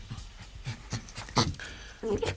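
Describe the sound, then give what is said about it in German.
Oskar the dog pants in quick, breathy bursts in a room, then lets out a short, high whimper at the end. No one speaks. “Hund Oskar war natürlich auch dabei.”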